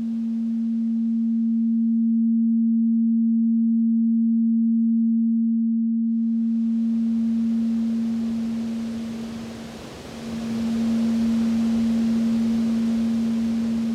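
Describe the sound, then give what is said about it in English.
A steady, pure low note drones throughout: a waterfall recording stripped down with audio software to a single note. Rushing waterfall noise fades out early, leaving the tone alone. The waterfall's frequencies are then layered back and the roar swells around the note, with a brief dip in the note near the end. “We're going to use that software now to strip the sound all the way down to a single note.”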